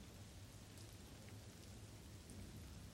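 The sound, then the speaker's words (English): Steady rain falls continuously against window glass, a dense, even patter with soft low rumbling underneath, moderately quiet with no voices. “The count turns to rest his sleepy head on his fluffiest pillow and watches the rain roll slowly down the windows.”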